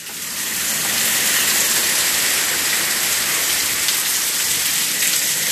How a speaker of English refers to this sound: It's a rainy day. I'm going to let y'all hear it. It's raining hard as fuck in Miami. Listen.